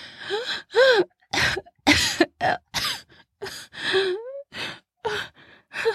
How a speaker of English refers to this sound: fell back with a loud gasp and coughed.